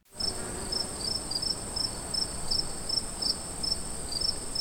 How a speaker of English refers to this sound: Awkward silence. Cue like crickets. Crickets.